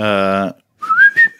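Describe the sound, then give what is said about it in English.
A person whistles a brief song melody, a few clear rising notes lasting about half a second, right after a short burst of a buzzy, humming tone and a pause. “I don't remember the whistling.”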